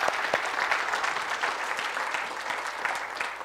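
A room full of people claps steadily, a dense patter of many overlapping hand claps at an even, moderate loudness with no voices breaking through.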